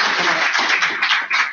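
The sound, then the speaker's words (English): A crowd applauds steadily for Sheriff Leonard, a dense, hissy wash of many hands clapping at once, fairly loud and continuous throughout with no voices standing out. “So everybody, could you please give a round of applause for Sheriff Leonard?”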